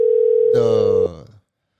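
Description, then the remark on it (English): A phone line ring tone hums steadily for about a second while a guest is being called, loud and continuous, before a voice cuts in over its end and trails off briefly. “Did you got him on? No, I still ring.”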